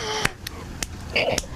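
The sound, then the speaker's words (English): A few sharp hand claps, about four, land at uneven intervals over a soft background of murmuring voices and tonal sound. The claps are crisp and moderately loud. “I keep missing the claps.”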